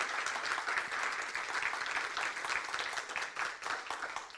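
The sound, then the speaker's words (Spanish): A church audience breaks into sustained applause for the Lord after a closing prayer, a dense, steady wash of many hands clapping for several seconds with no pauses, at an even, fairly moderate loudness throughout. “Ahora un aplauso al Señor.”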